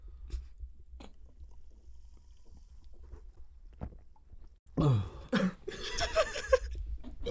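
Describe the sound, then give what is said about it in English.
Soft, wet gulps and clicks of a man swallowing sparkling water with the mic held right to his neck, followed by a louder burst of sputtering, coughing throat sounds near the end. “Here, …, could you hold the mic up while I take a little... Will do. Sip. Put it right to his neck.”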